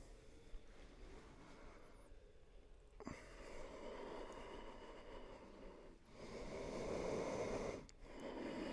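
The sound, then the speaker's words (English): Slow, hushed ujjayi throat breathing with a soft oceanic rasp, several long inhales and exhales following one another in a steady rhythm, fairly quiet with no talking. “Your listening is what creates ujjayi breath.”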